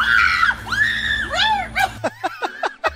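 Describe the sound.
A person reenacts the scream they let out while trying to save a drowning squirrel from an inflatable kiddie pool: a series of high, panicked screams, wavering and shrill, then several short, sharp yelps in quick succession, loud with no other talking.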